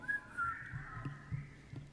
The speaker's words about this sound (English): Wow, impressive. You guys should all be in the whistling choir.